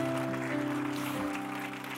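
church audience applause

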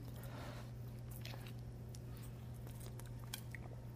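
drinking water

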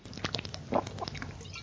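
drinking water

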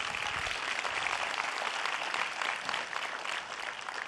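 audience clapping

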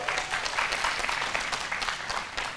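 audience clapping hands

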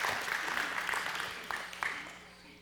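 audience applause

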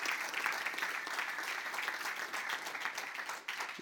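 audience clapping

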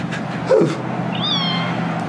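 kitten meowing

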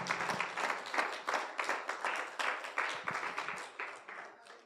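audience applause

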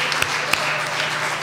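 audience applause

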